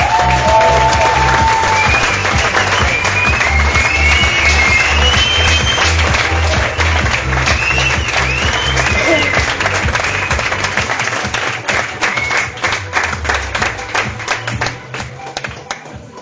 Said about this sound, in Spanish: quiero que todos recibamos con un grandísimo aplauso, porque tenemos en la sala al grande de los grandes